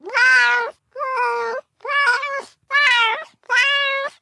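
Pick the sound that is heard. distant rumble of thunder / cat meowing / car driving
cat meowing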